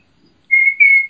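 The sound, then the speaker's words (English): Two high-pitched turkey kiki calls whistled by mouth without a turkey call, steady piercing tones with a brief break between them, loud after a moment of near silence, recorded in October while getting ready to set tree stands. “You're going to hear me doing kikis just with my whistle. That's me whistling.”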